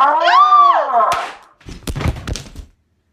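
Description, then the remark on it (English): A drawn-out cry ends in a sharp smack, followed by a burst of heavy thuds and scuffling as a woman is tackled, knocked to the floor and knocked out, then silence. “what a tackle.”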